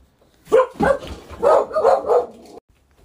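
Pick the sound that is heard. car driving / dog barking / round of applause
dog barking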